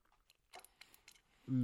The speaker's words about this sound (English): Excuse me. I am like destroying an olive right now. They're delicious olives.